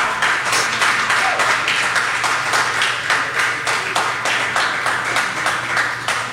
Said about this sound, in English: That was real applause. That's not like piped in silly stuff. Those are happy beer drinkers hanging out with